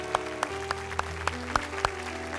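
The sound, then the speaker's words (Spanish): A church audience applauds the Lord with steady, rhythmic claps, about seven sharp beats in unison, over sustained low musical tones. No one speaks. “Le damos un aplauso al Señor entonces, iglesia.”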